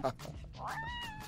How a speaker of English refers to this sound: It's a black cat meowing.